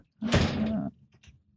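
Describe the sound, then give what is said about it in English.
A door swings shut with a loud, drawn-out scraping thud lasting under a second, followed by a couple of faint, quick clicks as the door is locked. No one speaks. “Will you close things. That door and lock it?”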